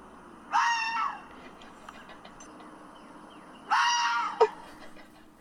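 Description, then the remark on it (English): A fox lets out two harsh, raspy screams, each lasting about half a second, separated by a pause of a few seconds. The calls are loud, with no voices around them. “So what does the fox say? I have two sounds for y'all to hear.”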